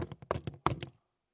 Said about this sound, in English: Three times he knocked, and then right then, three men arrived.